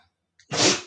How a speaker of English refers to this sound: He's still sneezing. Sorry. Go out. If you have birds possibly chirping in the back, and I have a dog that's sneezing. He got some pollen up his nose because we're just a river of pollen here in the Hudson Valley right now.